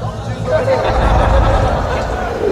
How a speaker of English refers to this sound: I heard his final words even amongst the roar of the crowd.